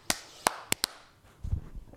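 A few sparse, half-hearted claps from a small group for a segment on the show Pissed Off: four sharp, uneven smacks in the first second, followed by a brief low thumping rumble and no talking.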